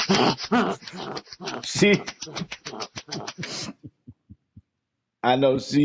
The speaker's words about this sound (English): Well, I know she can't hear us for all the static flapping in the background.